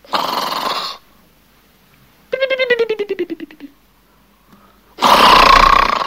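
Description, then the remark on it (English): A person snoring alone: a raspy noisy inhale, a pause, then a fluttering, rattling exhale that trails off, and another loud rough inhale begins. “Is that someone snoring? Yes! Perfect! It is.”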